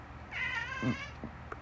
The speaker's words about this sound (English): is my baby cat that's in here with me. And he is a sweetheart. Gonna be a little bit, my man. You just go ahead and play.